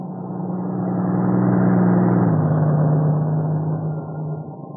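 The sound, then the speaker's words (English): A heavy engine of a truck from the plant at Maywood rumbles steadily, growing louder as it approaches and then holding steady, its low tone dipping slightly midway as if shifting gear or passing by. “If it's one of the trucks from the plant at Maywood, I'll be able to tell in a minute.”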